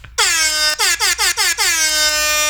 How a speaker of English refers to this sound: That's it. That's it. That's music. Sounded like an air horn.